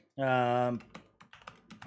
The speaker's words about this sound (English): So you're typing Rust.